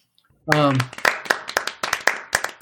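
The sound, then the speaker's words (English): Brief vocal sound, then a short burst of applause for a piece of poetry: steady, fairly loud hand claps at an even quick rhythm, like one or a few people clapping. “And then that was applause for your work.”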